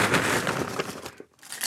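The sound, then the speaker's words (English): Potato chips for topping macaroni and cheese rustle and crackle as they are handled and put into a mortar and pestle, a dense run of sharp crunchy crinkles with a brief pause before another loud burst of crackling. “Got some potato chips here.”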